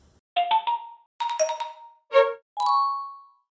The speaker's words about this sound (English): Then there are the notification chimes and dings that are music to some people's ears, signaling new messages and events, but for users who can't hear them, the alerts go unnoticed.